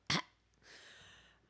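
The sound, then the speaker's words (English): A woman imitates a cat hacking up a hairball: one sharp, loud retching burst, then a brief pause and a long, raspy, wheezing hiss. “Oh, and she's coughing up a... she's coughing up a fur ball.”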